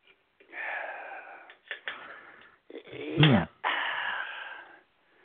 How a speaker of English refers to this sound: Maybe you need to stop coughing.